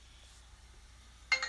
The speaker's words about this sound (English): Oh, it sounds like the phone's ringing. Oh, this has got to be our special guest.